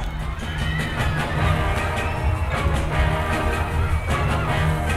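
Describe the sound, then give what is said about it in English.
A large crowd of young women screams and shrieks nonstop in front of the Plaza Hotel in New York City, a dense, loud wall of high-pitched voices that swells slightly throughout, with no individual words standing out. “Some young ladies in front of the Plaza Hotel in New York City.”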